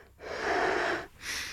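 Heavy breathing onto a spoon to make it stick to a nose: one long, loud, breathy exhale followed after a brief pause by a shorter, hissier puff of breath, with no talking.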